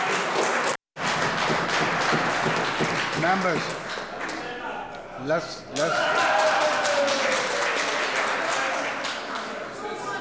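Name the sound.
applause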